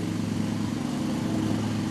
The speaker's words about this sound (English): God. How many times are we going to mow the same area? I don't know. Until he gets down to the dirt. He'll mow the dirt too. I think you're just mowing dirt at this point, ain't you?